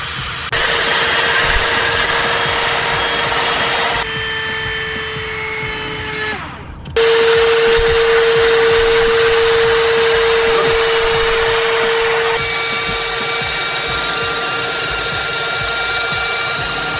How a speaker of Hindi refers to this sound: यहाँ पे आप देख सकते हैं कि तुसा वैक्यूम क्लीनर ने यहाँ पे डस्ट को काफी अच्छे से क्लीन कर दिया है मिनिमम एफर्ट्स के साथ,